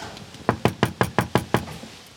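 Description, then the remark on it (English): A visitor from the ABC raps seven quick, sharp knocks on the wooden front door of an off-grid terrace house owned by a homeowner in the inner-city suburb of Chippendale, in an even, rapid rhythm, fairly loud, with no voices. “Ah, my favourite door knocker, someone from the ABC.”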